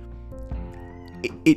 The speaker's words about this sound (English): The cat talking, obviously. He wants to be part of the show as well.